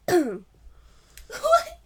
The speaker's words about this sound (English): You were just, like, powering up a cough. You're like, let's go. Cough. Like, nothing.